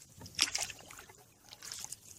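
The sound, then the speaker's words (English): A canoe paddle dips into the calm water of Nittinat Lake in two unhurried strokes as the canoe heads down the lake toward the ocean, each a soft splash and slosh, with a quiet watery trickle between them. “They loaded up their canoe and paddled down the lake towards the ocean.”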